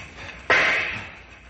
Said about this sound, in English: Stand back while I shoot the lock off.